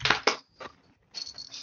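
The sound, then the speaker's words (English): A cat scampers across a floor: a few quick scuffing thumps, a brief pause, then a longer stretch of soft scrabbling and rustling, fairly quiet with no voices. “We have a cat doing a running, I'm afraid.”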